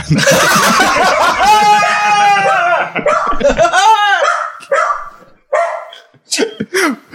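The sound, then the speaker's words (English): A dog barks excitedly at a delivery, starting with a loud, dense flurry of yelps and howl-like barks, then breaking into a few short, sharp barks with brief pauses between them. “That's why the dog went nuts.”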